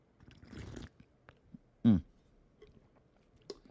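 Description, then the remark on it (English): A slurping sip of hot green tea with honey and lime from a mug, followed about a second later by a single loud swallow, with a soft click near the end and no talking. “And as usual, I have to take my sip.”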